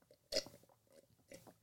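A quick sip from a drink, with a short wet slurping burst followed by a softer second sip and faint mouth noises, no talking.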